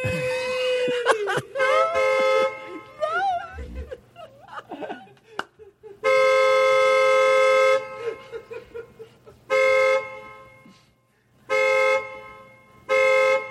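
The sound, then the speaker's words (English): A car horn honks loudly three times: one long sustained blast, then two shorter ones with brief pauses between. Before the honking, voices can be heard shrieking and whimpering. “So he just sits and he beeps and he beeps and he beeps.”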